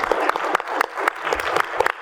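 A crowd breaks into steady applause, dense overlapping claps filling the space at a moderate, fairly close level with no voices standing out.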